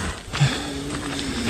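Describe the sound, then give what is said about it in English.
A mountain lion in Utah snarls and growls in a low, sustained rumble, steady over a rough outdoor background, as it stalks and menaces a runner walking slowly backward up a road; no voices during the moment. “Is a runner in Utah being menaced for 6 full minutes by a mountain lion that is stalking him as he is walking slowly backward.”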